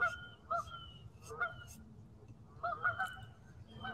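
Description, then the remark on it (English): Several geese honk in short bursts as they come in for a landing, a few calls overlapping, over a low rumbling outdoor background. The honks come in uneven clusters. “Ivy loves the geese.”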